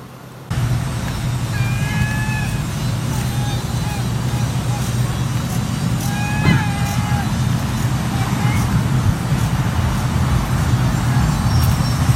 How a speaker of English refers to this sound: That, it turns out, is not a cat, but a bird called the cat bird. A bird which sounds like a cat. Only on Cape Cod. Actually, probably not at all only on Cape Cod, but that is the first time I saw it.